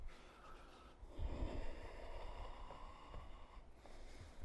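A deep, forceful breath is drawn in through the nose and mouth during pranayama breathing in a yoga session, a long rushing, airy hiss lasting a couple of seconds before it eases off. No one speaks.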